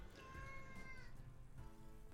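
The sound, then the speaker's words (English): A male cat meows twice, a drawn-out tonal cry followed by a shorter one, over a steady rain-like background hiss with no talking. “He just meowed because he didn't have one to open.”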